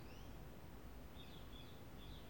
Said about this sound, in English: I can hear the birds.